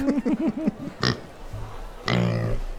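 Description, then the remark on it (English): A quick run of short, squealy oinks of a little pig, then a sharp snort and a longer, rough nasal grunt, fairly loud; it sounds like a person imitating a pig. “The little pig oinking behind him.”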